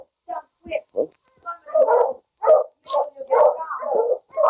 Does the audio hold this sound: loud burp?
no